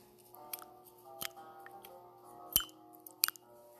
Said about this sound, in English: But listen, this is happy. Listen to the sound of my tea bag when it's in my water.